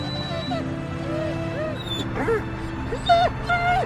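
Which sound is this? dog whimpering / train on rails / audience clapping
dog whimpering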